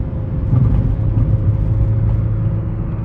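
Steady low engine drone and road rumble heard from inside a moving car, loud and continuous with a faint whir, no voices.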